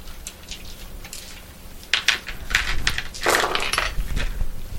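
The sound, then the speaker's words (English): Seven dice clatter and tumble across a hard surface: a few light clicks, then a busy burst of sharp, bright rattling clacks that tapers off. No one speaks. “If somebody will roll seven dice for me.”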